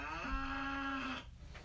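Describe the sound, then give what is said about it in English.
A single cow moo, a steady drawn-out low call lasting about a second, heard on its own, then fading into quiet background. “No, he's the cow!”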